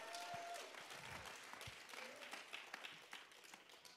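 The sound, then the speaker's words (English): Steady audience applause in a church, a dense wash of many hands clapping at once, sustained and fairly loud throughout with a few brief voices and whoops mixed in, for the church's title as the largest African-American landowner in the Midwest. “I mean, you can't clap enough for that.”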